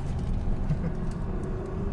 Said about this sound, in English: So don't worry, everyone. We are driving very slowly around the corners. And because we're so heavy, we're making like tire marks on the floor.